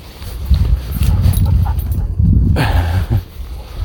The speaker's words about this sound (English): Panting dog. The crackle. You can probably hear. Waggy tails.